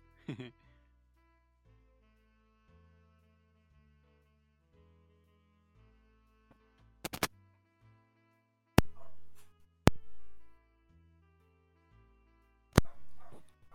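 A dog barks several times in short, loud bursts, with a low steady hum underneath and quiet stretches between the barks; the dog is barking because a visiting boy is playing rowdily with it.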